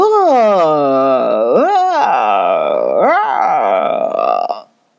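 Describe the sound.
A person's voice imitates a big lion's roar: a loud, sustained, growling bellow lasting several seconds, surging upward in pitch three times before cutting off abruptly.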